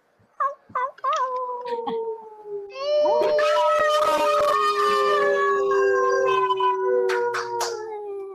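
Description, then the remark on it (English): Several people on an online call unmute and howl together like a wolf pack in a collective moon howl, long rising and falling wails overlapping into a loud, sustained chorus after a few short yips at the start. “to just join me in unmuting yourself, and let's all do like a collective moon howl.”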